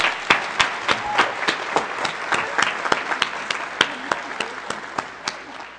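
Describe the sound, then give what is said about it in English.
An audience applauds steadily, with a dense wash of many hands clapping and a few sharper individual claps standing out at a quick, irregular rhythm, sustained throughout. “And she's a perfect angel in the church, I think, so let's give her a round of applause.”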